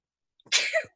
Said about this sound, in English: Bless you. Let's not edit that out. Let's keep that in. Yeah, we gotta keep the sneeze in. As long as it's not a cough, right?